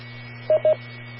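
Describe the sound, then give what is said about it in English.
Two short touch-tone dialing beeps in quick succession, sent over a radio autopatch to call a cell phone, loud and clear over a steady low hum, with no voices present. “I'll call her cell phone.”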